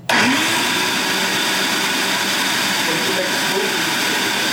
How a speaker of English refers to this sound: So what is that? A blender or? It's a food processor.